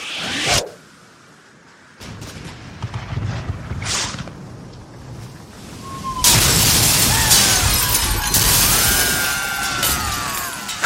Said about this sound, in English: Quickly fire a barrage into their port side while they reload. Aye, aye, sir. Fire the cannons!